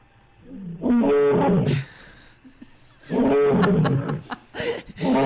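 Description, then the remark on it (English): An Asiatic lion roars twice, each loud, deep, rasping call rising and breaking off into grunts, with a short quieter gap between the two bursts. “That is the Asiatic lion, and I'm telling you, wow.”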